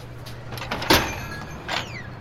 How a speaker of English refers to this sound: Things like a phone booth, and that you don't really have in New York anymore, the sliding door of a phone booth.